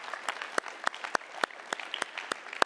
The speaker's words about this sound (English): Oh, what an awesome story, huh? Yeah, you can clap.